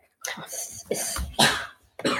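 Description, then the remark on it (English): A series of four harsh coughs, spaced out with brief pauses between them, each a rough burst of breath with no talking around them. “Here, one sec, because I had to cough.”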